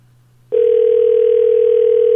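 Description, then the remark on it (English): A telephone ringback tone on an outgoing call to someone in Alberta starts abruptly after a brief low hum and holds as one steady, loud electronic tone to the end, with no talking. “Doesn't that mean it's still ringing?”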